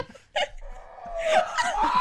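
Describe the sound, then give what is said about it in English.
A person does a squawky, warbling turkey imitation, rising into a loud, shrill gobbling screech that carries on for a couple of seconds, with a brief chuckle-like burst near the start. “The turkeys are like...”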